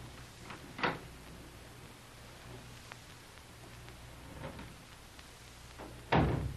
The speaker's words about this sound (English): Look. Here's another door. Let's see where this leads to. Watch.